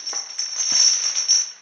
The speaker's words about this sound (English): What's that I hear? Heavens! I've turned into a motionless figure of fire and ice. There's a chain rattling. May I be killed if it isn't a galley slave spirit in torment.